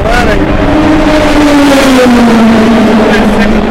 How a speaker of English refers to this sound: Or I'm sorry, so let's go back to the track. I know what you're thinking. More cars zooming, not a lot of content, but come on, man, give it a minute.